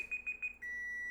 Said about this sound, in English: There's mine. That was the timer. 90 minutes of bean baking.